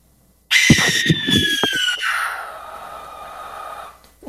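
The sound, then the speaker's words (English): A barn owl gives one long, harsh, hissing screech lasting several seconds. It bursts in loud and raspy, with a thin whistling edge, then slowly fades and trails off. “Now, I said I was going to play the barn owl, B-A-R-N, which I think is one of the fiercest, scariest sounds of all of them. So here's the barn owl.”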